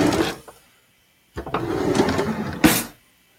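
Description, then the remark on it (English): A kitchen utensil drawer scrapes open with a short rattle, then slides along with a sustained rolling rumble before shutting with a sharp thud. Fairly loud, no voices. “It's a kitchen drawer.”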